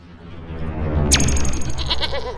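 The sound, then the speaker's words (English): A bighorn sheep lets out a loud, wavering bleat that starts partway in and carries to the end, with no one talking over it. “What are the results of the Bighorn Sheep Survey?”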